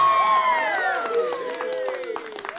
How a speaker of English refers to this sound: All right, well, I'll get this one. Hold for applause.